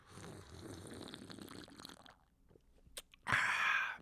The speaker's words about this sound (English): I gotta say, too, that I put the slurp in there because I'm like, oh, that's everyone keeps talking about. Just keep slurping the Summersby.